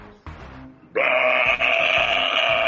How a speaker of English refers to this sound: This sounds like a horrible burp.